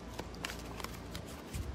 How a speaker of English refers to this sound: One-handed turning the pages. Still haven't gotten good at that.